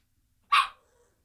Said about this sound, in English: Somebody's getting a little vocal over there. You guys okay? That little bark is just adorable.